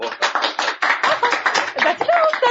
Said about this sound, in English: The applause is very flattering, but Mr. Edwards has to leave pretty soon, so please stop applauding.